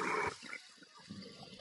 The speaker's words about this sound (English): What is that thing that is doing? What is that? I'm taking water. Hey. I thought something was pouring down. No, I'm getting water.